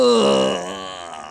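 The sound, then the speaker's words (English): A voice imitates a hideous, pained moan of the aberrant Promethean, a creature in pain: one loud, drawn-out, throaty groan whose pitch slides downward and fades slightly over about a second and a half. “Out a hideous moan. He moans.”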